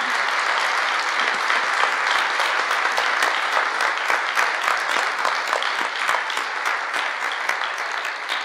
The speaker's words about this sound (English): Let's give a big round of applause for all the candidates.